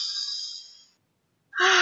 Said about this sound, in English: from the minute you wake up in the morning, as you're lying in your bed, even if the children are about to leap on you, with the children, you say, okay, let's all just do our tummy breathing.